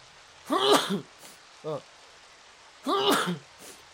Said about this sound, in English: I gotta sneeze.